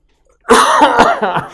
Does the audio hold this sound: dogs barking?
no